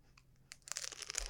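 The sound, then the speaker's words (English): Someone bites into a hard, crunchy vanilla ice cream treat with a hard outer layer, into the microphone: a few faint crackles, then a dense burst of sharp crunching that builds and keeps crackling for about a second. No one talks. “Now, do you want me to bite into it, into the microphone?”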